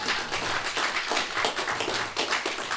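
Sustained applause from an audience, a dense crackle of many hands clapping at once, steady and fairly loud throughout with no voices standing out.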